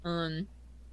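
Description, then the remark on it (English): A single short, steady bird-like call, fairly loud, lasting under half a second, seemingly voiced by a person imitating a bird, followed by quiet. “It was a really awkward silence, except for, you know, the occasional bird.”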